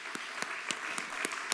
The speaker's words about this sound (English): Why don't we all put our hands together and clap to the Lord?